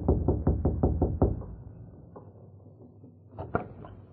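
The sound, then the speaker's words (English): A series of six or seven firm knocks on the wooden door of a home in quick, steady rhythm, followed by a pause and a couple of softer thuds. “They saw Lem Foster rapping on the door.”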